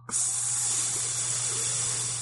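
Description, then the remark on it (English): A voice imitates a shaken soda can being opened: a sudden, steady, airy hiss that starts sharply and holds for about two seconds, fairly loud, with no talking. “It was onomatopoeia derived from the sound of a carbonated beverage being opened.”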